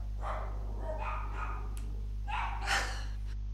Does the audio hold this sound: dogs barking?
yes